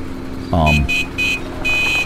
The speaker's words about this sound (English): Billy McConnell honks the horn as he comes pulling up to the farmhouse